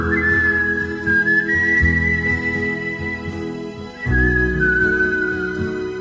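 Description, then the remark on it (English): A clear whistled melody floats above a steady band and rhythm section, holding long gliding notes through a full, loud musical backing with no voices. “These are the top 10 whistling songs of all time.”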